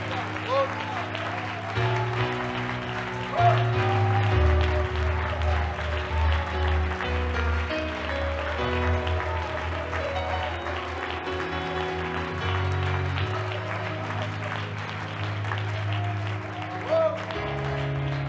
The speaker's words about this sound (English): Let's do that. Give the Lord a great hand clap, praise, or shout. Glory to God.